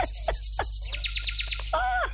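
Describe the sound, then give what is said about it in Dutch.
A bird in a room chirps in a quick run of short, bright tweets, ending in a longer warbling whistle, with a steady low hum underneath and no one talking. “Ik heb daar gezet een vogel in de kamer bij u.”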